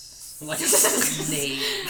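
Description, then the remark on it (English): A human voice makes a sustained, breathy hiss imitating a snake, a bright airy sound lasting nearly two seconds, moderately loud with faint voiced undertones. “Like a snake.”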